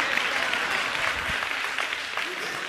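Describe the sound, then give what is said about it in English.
A crowd claps steadily for a few seconds, a dense, even patter of many hands at a fairly strong level without letting up. “Mothers, y'all should be applauding me right now because I'm about to help you.”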